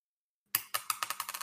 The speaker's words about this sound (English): Yeah, you need to roll. I'm gonna roll a D4, so there's a chance that you don't have enough.